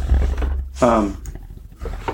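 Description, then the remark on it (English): A dog at home lets out a loud, rough bark, followed by a second, weaker burst, over a steady low hum, apparently after hearing someone go down the street. “My dog is a nut. Apparently, he heard someone go down the street.”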